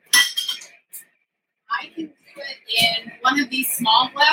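A spoon scoops cooked quinoa into a small glass bowl, with a series of light clinks and scrapes in irregular bursts, and someone talking intermittently alongside.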